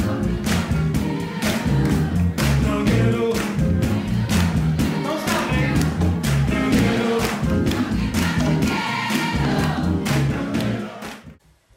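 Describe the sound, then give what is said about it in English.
A joyful crowd at a live show, loud and sustained, with voices singing and cheering along over a pounding band beat that runs steadily before cutting off at the end. “You can hear the crowd. And you can hear the joy.”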